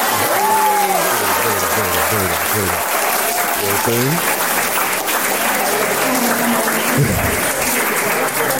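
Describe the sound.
Loud, steady audience applause fills the whole stretch, dense and unbroken, with several voices talking and calling out over the clapping, on the We Love Hip Hop show at Visionary Arts Center.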